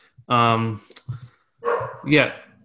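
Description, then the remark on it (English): Dogs bark right at a door: one long, loud, tonal bark, a few short yips, then two more strong barks close together, all prominent. “Oh my god, why do they gotta bark right at my door?”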